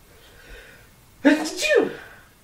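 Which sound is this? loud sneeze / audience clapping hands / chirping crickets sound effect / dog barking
loud sneeze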